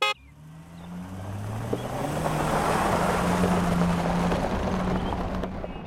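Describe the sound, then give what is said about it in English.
A car drives away carrying Aunt Kitty, Esmeralda and Fifi: its engine drones steadily, the low hum shifting in pitch under a broad rushing, wind-like noise that swells and then eases slightly at the end. No one speaks. “There goes Aunt Kitty, Esmeralda, and Fifi now.”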